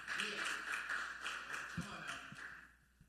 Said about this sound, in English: Los que aplaudieron entendieron la palabra. Those of us that are applauding understand